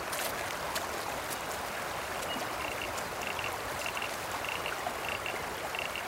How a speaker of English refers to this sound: I can hear the sound of a creek near the track. Can you hear the water running over the rocks?